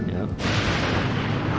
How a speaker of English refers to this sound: There's a bunch of thunder and lightning.